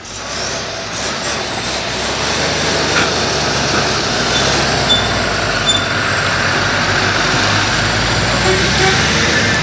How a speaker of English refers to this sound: So it's just having loads of cars and tractors passing.